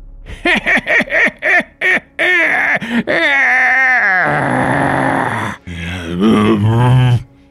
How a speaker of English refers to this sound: You hear something get up from out of the chair, and you hear a cackle and haunting laugh as you hear the sounds of a transformation.